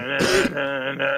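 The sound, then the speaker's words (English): Someone clears their throat once: a rough, raspy burst that settles into a steady, voiced hum-like tone and swells briefly before stopping. It is fairly loud, with no talking. “Let me clear my throat.”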